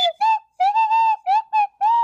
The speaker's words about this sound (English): What if we could play? What if we could play it on the slide whistle?